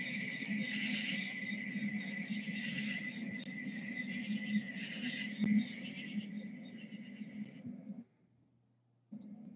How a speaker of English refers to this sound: Was that like crickets? Yeah, that's what it sounded. Oh, yeah, I heard that too. You trying to make a joke? I really heard crickets. I thought it was your mic.